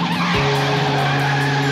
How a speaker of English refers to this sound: That's Din Bowman driving a car at high speeds around an obstacle course.